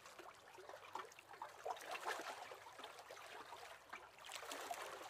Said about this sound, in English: As the little lapping waves carry it up and down at the jetty, where it is tied up with a thin blue rope.